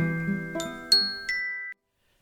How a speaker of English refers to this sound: The village church bells wake her early on Christmas morning, and for a moment she can't figure out what they are or where she is.